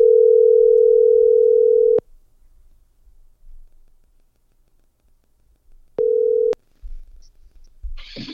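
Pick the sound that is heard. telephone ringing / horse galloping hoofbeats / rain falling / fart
telephone ringing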